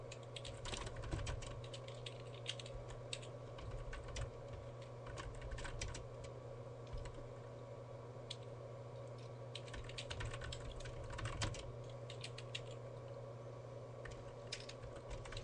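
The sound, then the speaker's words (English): Rapid, irregular clicking of keys on a computer keyboard as several people type, steady for the whole stretch, over a constant low electrical hum. No one speaks. “Hold on, we're all like typing out how this is gonna work.”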